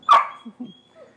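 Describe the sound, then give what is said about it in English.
A single sharp, loud bark from Lily, an excited dog during sit training at night, followed by a couple of softer huffs and a faint whine trailing off, with no talking. “She's just real excited tonight.”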